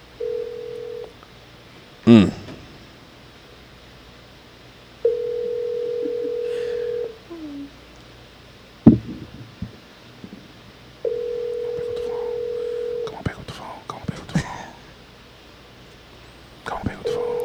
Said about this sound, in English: Please pick up the phone.